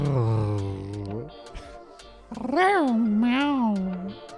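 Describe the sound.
A person imitates a cat's meow, starting with a low drawn-out vocal whine, then a louder, wavering meow-like cry rising and falling in pitch.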